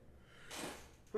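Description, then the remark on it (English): A single quick sneeze, a hissy, breathy burst lasting under half a second, followed a moment later by someone starting to speak. “Bless you.”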